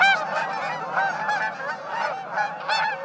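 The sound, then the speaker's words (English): A flock of Canada geese in flight honks continuously overhead, many overlapping nasal calls blending into a busy chorus at steady loudness with no voices. “As V-shaped flocks of geese fly south, millions of Canada geese migrate each year.”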